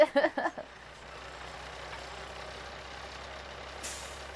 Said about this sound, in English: Kill that engine. There we go, now you can hear yourself.